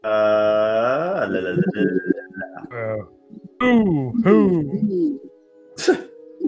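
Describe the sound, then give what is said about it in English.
Someone vocally imitates an owl, making a run of wavering, hooting calls, with short pauses between the hoots and a brief breathy burst near the end. “are you pretending to be an owl?”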